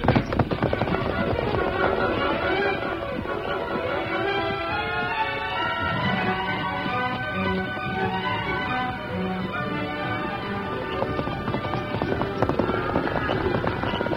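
Horses ridden hard by deputies gallop, driving about 50 longhorn cattle away from the rest of the livestock; a rapid, steady drumming of hooves that runs throughout, loud, mixed with a dense bed of other sound such as music or shouting.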